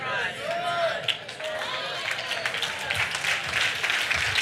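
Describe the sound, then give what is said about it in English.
An audience claps and cheers in a steady, dense wash of applause lasting the whole moment, with a few voices calling out over it. “I'm teaching good if you be clapping or not.”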